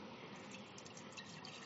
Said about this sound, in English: This isn't hugely visually exciting, guys. It's just me pouring milk around.